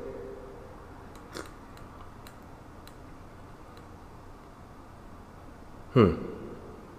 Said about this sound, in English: Here's the first sip.